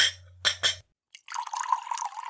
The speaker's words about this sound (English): He straightened his tie and began to whistle before sauntering over to the whiskey bottle on the bedside table to pour a drink.